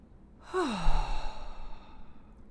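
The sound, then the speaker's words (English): A single long exhale through the mouth during a guided breathing exercise, a soft voiced sigh that trails off into a breathy rush of air, fairly gentle, with no talking. “And out through your mouth.”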